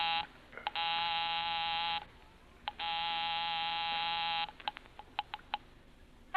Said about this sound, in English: I'll give 9B a ring first on the house phone.